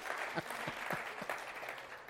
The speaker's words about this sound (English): Come on, give him a praise. That's what we came to do. How many love Jesus today? Put that other hand up there and clap him like this and give him a praise. There we go.